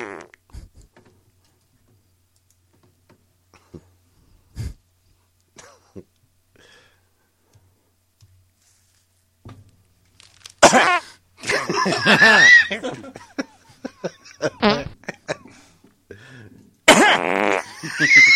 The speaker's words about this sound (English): Was that a fart? Are you okay? No. How long is that? 13 seconds. Jesus.